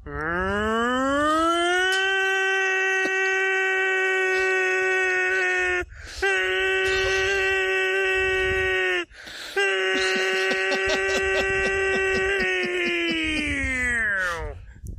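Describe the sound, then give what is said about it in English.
A voice imitates a tornado siren with loud, sustained wailing tones: a rising whoop into a long steady howl, broken by two brief pauses, then a final held wail that sags in pitch at the end. “He seemed to be imitating a tornado siren.”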